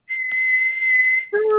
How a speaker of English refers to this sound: And here's the first whistle.